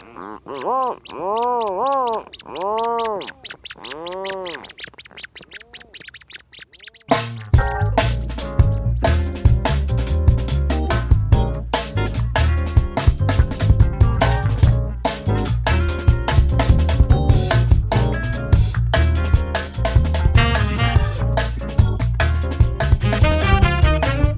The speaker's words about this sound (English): medium-sized dark gray duck-like birds that spend their days at sea and then return at night with fish for their single chick, hiding deep in a burrow. Jeff Rice recorded these birds with support from Acoustic Atlas at Montana State University.